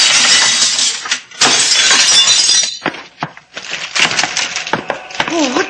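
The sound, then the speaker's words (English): Loud glass shattering in repeated crashing bursts as a machine is smashed apart, with splintering and clinking debris between heavy impacts; a brief vocal sound cuts in near the end. “Watch out for the flying glass, sailor.”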